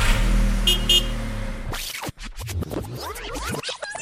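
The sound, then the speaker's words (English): A truck engine rumbles steadily with a low droning hum for a couple of seconds, then gives way to a busy run of scratchy scraping and squeaking noises. “Let's get up there and let's make it happen. I'll drive the truck.”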